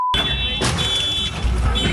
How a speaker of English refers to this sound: It looks like an episode of Demolition Derby, a woman in an SUV crashing into car after car in a parking lot, and it sure appears to be deliberate. This parking lot is being turned into a demolition derby.